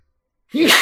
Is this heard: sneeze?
yes